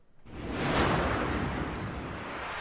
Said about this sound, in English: We can press the button and do the swooshes live, which is fantastic.